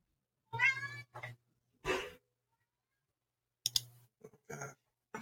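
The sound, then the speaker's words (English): A cat meows several times: a drawn-out, wavering cry with a short follow-up, a breathy huff, then two or three more short meows. No one speaks. “No, your cat.”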